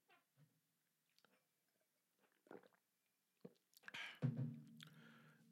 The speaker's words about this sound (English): Drinking water, folks, not coffee, water.